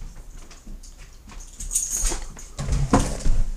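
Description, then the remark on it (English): A dog barks a few times in short, muffled bursts, growing a little louder toward the end, with some faint scrabbling noise in between and no one talking. “stop barking. Stop it.”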